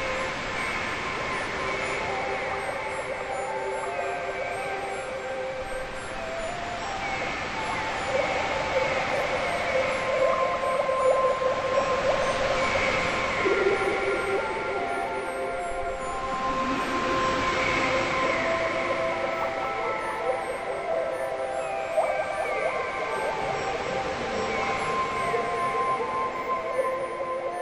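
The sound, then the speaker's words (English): A murky, distorted underwater wash rumbles on steadily, thick with droning tones and swelling surges, holding a fairly even loudness throughout with no voices. “So you hear the distorted sound under the water.”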